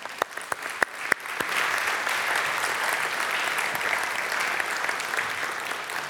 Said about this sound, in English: Let's give everyone a clap.